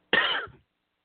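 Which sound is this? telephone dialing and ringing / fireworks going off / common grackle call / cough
cough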